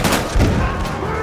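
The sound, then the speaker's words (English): A quick burst of loud gunshots from Colt revolvers fired by Rangers fighting the Comanche, several sharp bangs in rapid succession with echoing reverberation between them and no one talking. “And every Ranger was armed with two Colts. They were used to hearing the one shot go off, and then they all scramble to load, and then the next shot goes off.”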